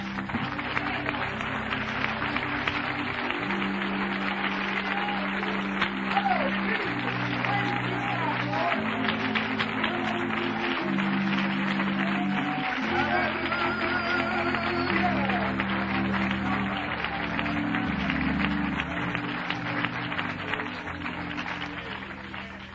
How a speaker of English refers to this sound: Would you put your Bible down and give the Lord a great big hand clap?